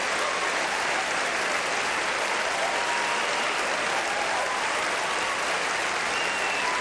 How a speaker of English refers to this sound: Yeah. Everybody cheering him. The Academy congratulates Roman Polanski and accepts this award on his behalf.